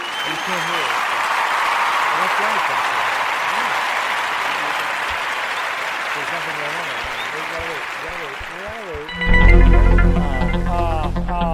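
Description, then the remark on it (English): A crowd claps and cheers steadily for about nine seconds, with whoops and shouting voices woven through the applause, before it cuts off into a sudden louder burst of tonal sound. “We're going to cheer for that.”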